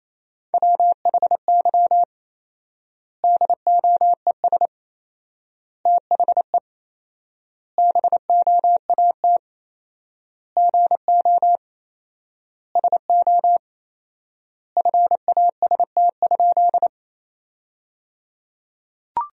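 Morse code sent at 28 words per minute, spelling sentences made from the top 500 words with 4x word spacing: one steady, mid-pitched beep keyed in quick dots and dashes, grouped into words separated by long silent gaps, with no voices.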